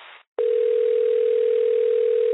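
A brief burst of hiss, a short silence, then a steady telephone dial tone hums at one unchanging low-mid pitch for about two seconds, loud and continuous, with no voices.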